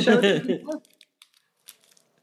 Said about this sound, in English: I like almost want to crumple it up. I will keep it. Yeah. Crumple it into a ball. Just like get rid of all the stickiness. Yeah, there you go.